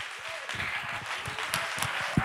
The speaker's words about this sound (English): Clap your hands and give Him praise. No, let's really clap our hands.